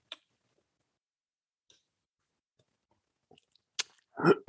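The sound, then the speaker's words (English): Mostly quiet with a few faint clicks, then a short slurping sip of hot Freedom Hill coffee near the end, brief and moderately loud, with no talking. “So as we get started, those of you who are followers of the program know that I need to get going with a sip of my favorite beverage.”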